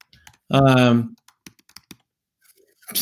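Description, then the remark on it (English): A short vocal sound is followed by a brief burst of computer keyboard typing of a chat message, a handful of quick, irregular clicks, then near silence before a voice returns at the end. “You know, I'm typing some things to you like you have a weird butt and emoji virgins are pussies.”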